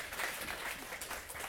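A steady wash of audience applause, many hands clapping at once in a dense, crackling texture that holds at an even, moderate level throughout without any voices.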